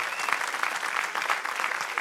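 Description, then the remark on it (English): An audience claps together, a dense, steady patter of many hands that keeps up evenly for the whole moment, moderately loud with no voices over it. “Come on, clap your hand.”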